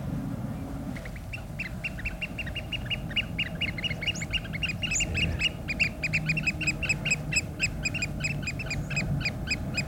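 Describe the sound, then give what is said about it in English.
Oystercatchers, black and white waders with long orange beaks, pipe in a loud, rapid run of shrill, repeated calls by a bay off the Menai Straits, starting after a second and keeping going, excited and insistent, over a low rumble of wind or water. “Always sounds so stressed out, oyster catchers.”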